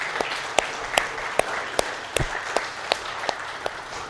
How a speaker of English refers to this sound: And so today we want to say thank you, moms. If you're here, mom, you're here and you're a mom, why don't you just listen to this, and this is for you. And let's just go ahead and clap and say thank you to them.